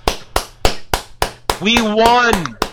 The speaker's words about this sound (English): The audience here claps.